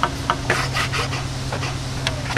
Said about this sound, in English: …'s hand-sanding the cherry wood sides of a guitar body. We file it down.